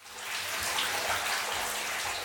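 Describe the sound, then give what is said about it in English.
Tap water pours steadily into a bathtub, a continuous rushing splash with a hollow low rumble underneath. No voices are present. “I usually have to put the water in first because otherwise it's too noisy.”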